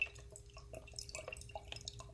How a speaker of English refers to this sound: I'm just going to open up this little sachet of Devondale milk. I have like small individual sort of sachets of Devondale milk for whatever reason, but I'm going to just start tipping the milk into the first wine glass. There it goes.